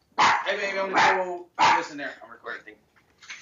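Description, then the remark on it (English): A dog barks loudly, three sharp barks in quick succession, as a woman comes home, then quieter, broken sounds trail off afterward. “oh, shit, hang on, my girlfriend's coming home, and the dog's going out.”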